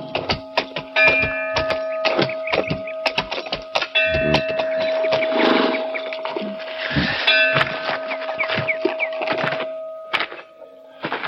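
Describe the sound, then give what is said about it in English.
Bells ring out steadily in Perdido to announce that a stranger is in the pass, their tones sustained and overlapping, over a busy layer of sharp clattering knocks. No one speaks. “Do they always ring bells? To tell us a stranger is in the pass, it is guarded.”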